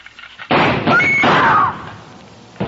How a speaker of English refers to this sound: When Susan snapped the spring lock to open the door, the gun outside opened up. The first slug caught her in the left shoulder, spinning her out of the way of the rest of them.